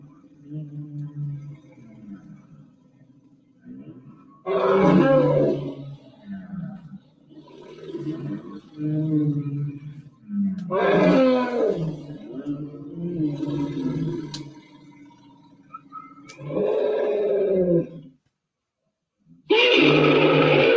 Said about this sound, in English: Okay, that's like a straight up roar. That is definitely some kind of distress call. That's an elephant. I'm pretty sure that's an elephant. I'm telling you, that's got to be an elephant. There's no way that that's Diplodocus.